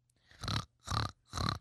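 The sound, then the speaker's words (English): A voice imitates a pig as a joking "warning pig", giving three evenly spaced, rough snorting oinks, each lasting about a quarter second, with brief silence between them. “I don't necessarily think we need a warning pig, but better safe than sorry. Oink, oink.”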